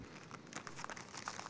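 Soft, continuous crinkling of a paper coffee filter being pulled out of a pocket and handled, with irregular little crackles and no voices.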